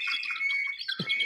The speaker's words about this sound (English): It's like, you hear that? I hear the call of the bald eagle.